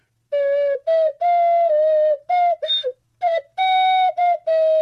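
A tune is whistled in a string of sustained, steady-pitched notes with short breaks between phrases. The pitch shifts up and down slightly like a simple melody, fairly loud, with no talking.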